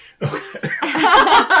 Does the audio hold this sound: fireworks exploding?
no